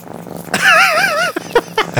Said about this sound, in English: you hear the cat purring. Yeah.